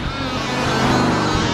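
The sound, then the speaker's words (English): A loud, throaty hot rod engine roars, its rumbling growl swelling slightly as the car, the Two Wicked, Carl's hot rod, drives past, with no voices over it. “And then after the car drives by, we resume drinking.”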